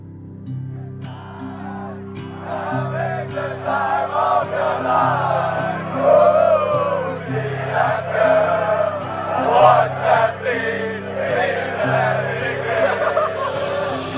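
A large crowd of Iceland football fans performs the Viking thunder clap chant: sharp, unison claps with shouts that start slow and gradually speed up over a steady low hum and crowd noise.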